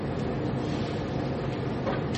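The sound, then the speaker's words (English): A train rolls past outside, moving again after being blocked for 45 minutes, a steady, unbroken rumble with a faint metallic hiss on top, holding an even volume throughout with no voices. “Well, I guess the train people have still, the train's been blocked for 45 minutes here. Oh, they're finally moving on both ways then.”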